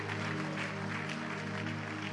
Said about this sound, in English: Keep clapping. Keep clapping. Keep clapping.